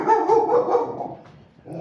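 A big, goofy dog at Anne Basting's house barks with deep, full-throated woofs, a quick run of loud barks followed by a brief pause and another bark starting up, with no one talking.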